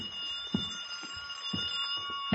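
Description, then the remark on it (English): A telephone rings in an apartment past two o'clock with a steady, shrill electronic tone that doesn't let up, accompanied by soft rhythmic low knocks roughly twice a second. No one speaks. “It was past 2 when I got back to my apartment and the phone was screaming for help.”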